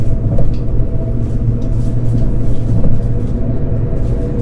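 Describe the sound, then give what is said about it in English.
A steady, loud low-frequency rumble fills the inside of a moving Trenitalia passenger train in business class, with a constant droning hum and faint rattles throughout, no voices present. “Thank you for traveling with Trenitalia. We will be glad to see you again on board our trains.”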